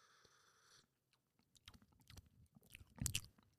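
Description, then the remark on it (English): A sip of coffee brewed from large Papua New Guinea beans: a short steady hum gives way to wet, crackly slurping that builds into a loud noisy burst near the end, with no talking. “And so let's get a nice sip for the people.”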